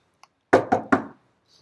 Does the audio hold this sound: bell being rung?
no